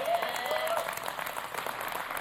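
A crowd breaks into steady applause, many hands clapping in a dense, continuous patter that holds at an even level for a couple of seconds, with a faint whistle-like tone at the start.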